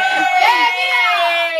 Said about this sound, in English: I just screamed at you. No applause. Just lots of yelling.